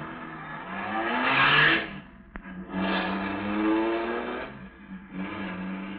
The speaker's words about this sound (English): At the moment that she's sending the big car roaring down the driveway, you're reaching in her dresser drawer for her small .22 caliber pistol.